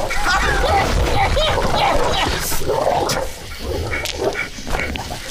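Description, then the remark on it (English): A large dog snarls and growls continuously, a loud, rough, guttural rumble with ragged bursts that ease slightly toward the end. “Over here, you big dumb dog!”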